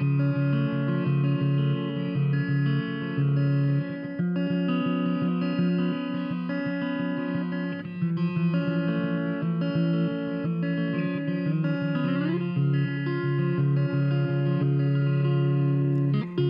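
A garage band plays a dense, steady rock track, recorded live at Never Records, 1611 Oak Street, Kansas City, in September 2018, with heavily distorted electric guitar and a low, droning bass, loud and sustained throughout with no voices.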